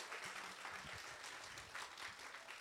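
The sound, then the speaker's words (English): A crowd claps steadily in a dense, continuous wash of many hands, fairly loud, with a faint murmur of voices underneath; an audience at Midtown Scholar giving a big round of applause. “Can we just have a big round of applause for Vashti, who did an amazing job?”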